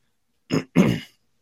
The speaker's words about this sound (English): I'm sorry for clearing my throat, guys. I've tried muting this in the past, though. It doesn't seem to work very well.